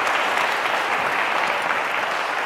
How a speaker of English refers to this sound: Thank you so much. We are now, oh yeah, a very good round of applause. Isn't that amazing?